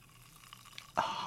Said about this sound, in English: Oh, take a sip closer to the microphone. It's very uncomfortable to do. Let them hear the bubbles.